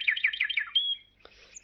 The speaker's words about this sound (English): When they were able to look once more, the vision had vanished, and the air was full of the carol of birds that hailed the dawn.